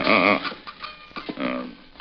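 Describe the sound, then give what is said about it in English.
A loud horse whinny with a shaky, quavering pitch, from the horses the Lone Ranger and Tonto have reined up behind a house, followed by a few short snorting breaths and a second, softer neighing call before it trails off. “Steady, big fella. We'll leave the horses here.”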